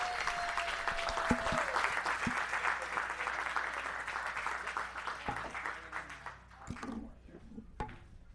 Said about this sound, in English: So without further ado, let's give a round of applause for the Amazing Avenue Audio Podcast.